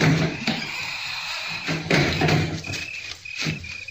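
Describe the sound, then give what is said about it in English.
A heavy cellar door in a yard, outdoors at night under a full moon, thuds and bangs several times in quick succession, with dull wooden knocks and scraping, while a steady insect-like chirp and low hum continue faintly in the background. “I crossed the yard to the cellar door. It was so heavy, I wondered how Dorcas ever managed to open it.”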